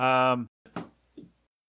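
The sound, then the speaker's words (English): A brief vocal exclamation, then a chair leaned back bumps against a cubicle panel behind it with a dull knock, followed by a softer clatter as a poster is knocked off and falls, fairly quiet. “I just leaned my chair back and hit these walls behind me, these cubicle panels behind me, and knocked off a poster.”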